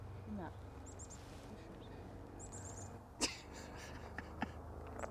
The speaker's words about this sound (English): For our narration, I'm actively looking at a black-capped chickadee. It's jumping from branch to branch and calling out.